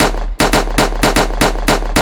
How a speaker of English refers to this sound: Somebody bust a shot. Bust a shot off a bad mind now.